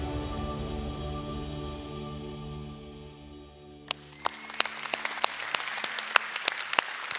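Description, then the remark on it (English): A steady, low tonal drone fades out, then scattered hand claps from an audience break in, a few sharp claps at first, quickly building into quick, uneven applause. “If you don't listen to anything else I've said and you've fallen asleep and now you just woke up because somebody clapped, here's the deal.”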